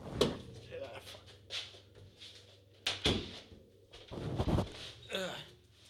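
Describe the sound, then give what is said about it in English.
A door is pushed shut, with a few sharp knocks and thuds spread over several seconds, plus rustling and handling noises in between. “Hold on, I forgot to close my door.”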